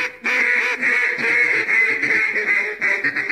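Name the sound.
quacking duck sound effect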